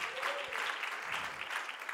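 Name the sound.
audience clapping hands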